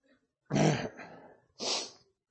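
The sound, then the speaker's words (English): A loud, explosive sneeze bursts out and trails off, followed a moment later by a second, shorter and breathier burst. No talking. “Sneezing does not work with this thing, okay? It hurts.”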